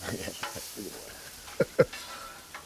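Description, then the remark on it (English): Food sizzles in a pan on two lit stove burners with a steady high hiss, broken by a few sharp pops and crackles near the end, and faint low clattering underneath. “I got both these burners going.”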